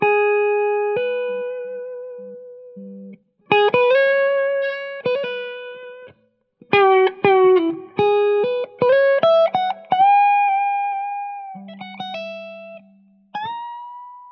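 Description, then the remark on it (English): A distorted electric guitar plays a solo lick, mixing long sustained notes with quick bursts of fast runs and bends, loud with no voices. “I'll show you one of the licks I spent weeks on.”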